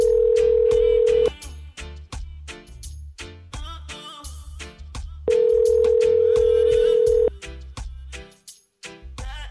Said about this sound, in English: God, I remember dialing the phones, you guys. Oh my God, this is remembrance and remembrance of telephones.